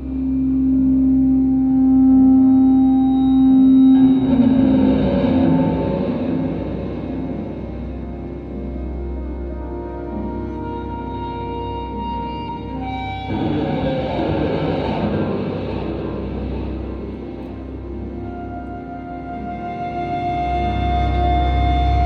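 Heavily distorted electric guitar with heavy metal-style distortion, droning with sustained, buzzing tones, an echo delay and wah-wah pedal sweep, played with volume-knob swells, swelling twice into dense, roaring washes before settling back; no voices.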